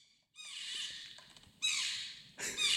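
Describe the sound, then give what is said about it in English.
A porcupine makes squeaky, muttering calls in three high-pitched bursts with brief pauses between them, fairly loud, with no talking. “This porcupine has been asked to leave the Michaels for not wearing a mask.”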